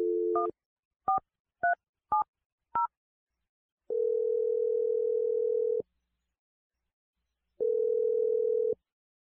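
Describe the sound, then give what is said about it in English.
A phone call dialed on the radio show Brooke and Jeffrey in the Morning: five quick two-tone keypad beeps dial a number, then two long, steady ringback tones sound with a pause between them. No one speaks. “Okay, I'm gonna dial his number now.”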